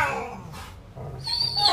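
A dog named Zappa, his vocal cords sore from barking, lets out thin, high-pitched whines and whimpers, rising and wavering in a few short bursts, moderately loud over a low background rumble.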